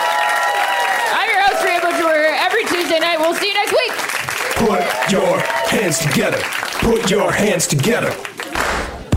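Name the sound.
audience applause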